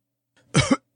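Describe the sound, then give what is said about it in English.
A single harsh cough from a man's voice, a short raspy burst with a second push at the end, standing alone in otherwise quiet surroundings, performed as an imitation of a dying man coughing out his last word. “He went rigid as he coughed out the last word.”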